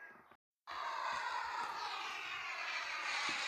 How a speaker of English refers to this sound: Wow! Un avion! Yes, a plane.